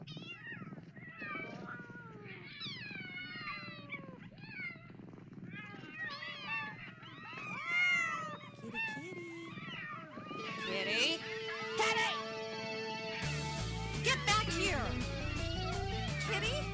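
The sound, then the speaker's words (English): A cat meows over and over, a steady run of insistent, rising and falling cries, with a buzzy, tonal clatter creeping in toward the end. “It goes meow.”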